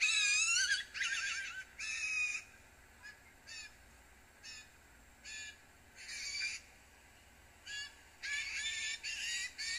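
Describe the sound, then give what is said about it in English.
A young blue jay gives its juvenile call again and again, harsh raspy squawks in short bursts with brief pauses, fairly loud, with no other sounds around them. “So the first call that you heard is the normal call for blue jays, and the second call was the whisper song, and then the third call is the juvenile bird call.”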